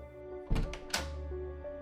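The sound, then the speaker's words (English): Two quick thumps about half a second apart, like a latch catching and a door swinging open, over a steady low musical hum with no voices. “he stands from the desk and makes his way over to the door.”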